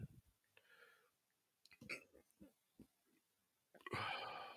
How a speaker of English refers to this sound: See, this ain't a professional show because I'm burping on the air.